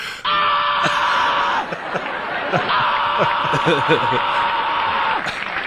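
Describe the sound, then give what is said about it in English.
A man performing a comedy bit on a television talk show lets out a long, loud, strained scream, breaks off briefly, then screams again at full volume for several more seconds, with faint laughter and chatter in the background. “he literally screams like that about seven times on Letterman”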